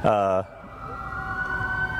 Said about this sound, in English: we'll wait a second while this fire truck goes by. Normally they just go down hunting, but of course this one had to go behind us.